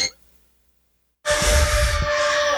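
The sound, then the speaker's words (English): After about a second of silence, a crowd of children, asked to give a scream, bursts on a count of three into a loud, sustained scream together, a dense high-pitched roar that holds steady to the end. “So right now, kids, I'm going to get you a little, your parents have been trying to probably keep you quiet, but I want to hear you just give me a little bit of a scream.”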